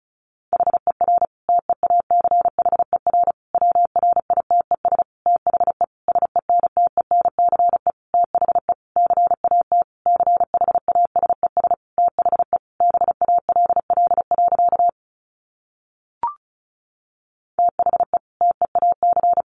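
Rapid Morse code at about 35 words per minute: a single steady mid-pitched tone keyed into quick dots and dashes, broken by a short pause and a faint blip before sending resumes.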